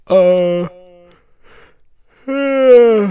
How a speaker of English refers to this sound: Again with the yawning, man. I'm so sorry.